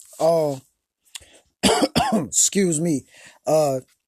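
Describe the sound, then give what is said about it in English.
A person coughs in several rough, loud bursts spread over a few seconds, mixed with voiced throat-clearing noises, with short pauses between them. “I got this cough, brothers and sisters.”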